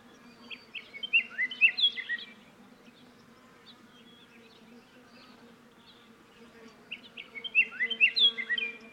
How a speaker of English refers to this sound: Perhaps the most musical singer in the Sonoran Desert is the colorful yellow and black Scots Oriole. Both sexes sing. I encountered my first at Organ Pipe in a patch of mesquite, its musical whistled songs rising above the buzzing of the bees.